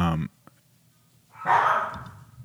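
A small dog lets out a short bark, then a longer, louder yapping burst a moment later, in the background.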